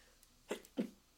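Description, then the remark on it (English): Two short, sharp sneezes in quick succession, with a whistling sound, against a quiet background, with no talking around them. “I don't know if you heard a whistle, but that happens when I sneeze because I don't sneeze correctly.”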